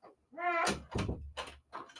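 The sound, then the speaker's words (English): A door swings shut: a drawn-out, rising hinge creak, then a solid thud followed by a few softer knocks and rattles as the latch settles. “Let's go ahead and close the door because I forgot to close it.”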